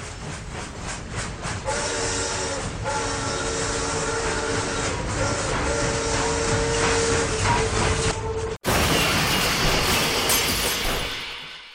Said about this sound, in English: The other train was already on the switch. The two trains collided at full speed, killing 14 people and injuring another 60.